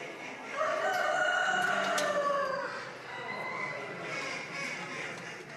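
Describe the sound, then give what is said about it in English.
A rooster crows loudly, one long drawn-out cock-a-doodle-doo that rises and trails off, over a busy background of other birds and crowd noise. The cock is caged at a poultry show. It is not pen trained and was brought from an open shed into the cage that day for the first time. “the wannabe runaway cock wasn't pen trained, just brought out of an open shed and into a cage today for the first time”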